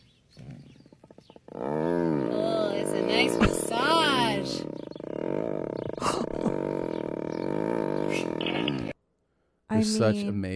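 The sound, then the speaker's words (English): A tiger purrs with a loud, deep, rumbling drone that holds steady for about seven seconds, stops abruptly, then starts up again briefly. A person speaks a few words over it. “This feels good purr, and it sounds like a fucking F-35 is about to take off.”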